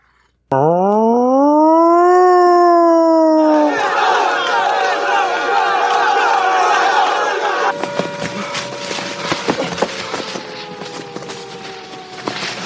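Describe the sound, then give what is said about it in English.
A loud prison siren sound effect wails upward in pitch and holds for a few seconds, then breaks into a dense, noisy clamor of shouting voices with sharp clanks and bangs scattered throughout. “Just kind of that prison siren thing going on.”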